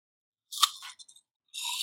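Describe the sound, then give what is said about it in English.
A crisp crunch of someone biting into an apple, followed by a few small chewing crackles and a second crunchy bite, with no talking. “I start with the crunch of an apple to like entice people.”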